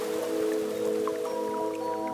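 Steady rain patters on a street in a continuous, even hiss, with a sustained low humming drone underneath and no one talking.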